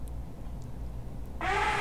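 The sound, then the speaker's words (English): A short, squeaky high-pitched fart bursts out loud in a living room near the end, following a stretch of low background rumble. No one speaks. “You don't mind if I fart in your living room?”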